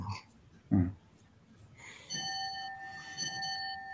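A clock that came from England chimes twice, each stroke a bright bell-like tone with long, shimmering overtones that keep ringing; a brief low murmur of voice comes just before the first stroke.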